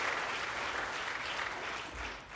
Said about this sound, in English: Come on, clap your hands.